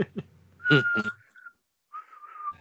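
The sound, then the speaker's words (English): A person whistles a short, eerie horror movie theme, a few breathy notes followed by a brief pause and a wavering sustained tone, with no talking. “I can't whistle.”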